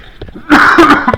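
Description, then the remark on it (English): A loud cough comes in two quick harsh bursts after a brief quiet moment, with no talking around it. “I should have a cough button, but I'm not that sophisticated at this point.”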